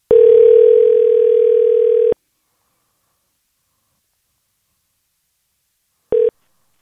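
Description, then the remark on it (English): A telephone line tone hums steadily for about two seconds, then falls silent before a short second burst of the same tone, as a call to a friend dials out and starts to ring. “So now it's time for a segment of the podcast called Phone a Friend, where we do just that.”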